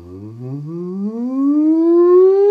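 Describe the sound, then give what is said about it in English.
A hummed 'ng' sound, done as a voice exercise, slides steadily upward from a low pitch to a high one in a single unbroken glide, loud, with no words. “and a high, then come down.”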